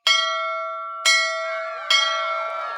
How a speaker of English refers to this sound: Seeing the signal in the distance, one of Boom's guards swung a mallet at the ship's bell at the top of the galley.